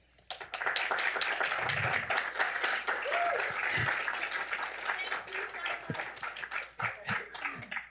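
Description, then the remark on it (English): Loud, dense applause from an audience welcoming Senator Ernst at a Heritage event, a steady wash of many hands clapping, with scattered whoops and cheers rising over it before it thins out near the end. “She has a cheering section.”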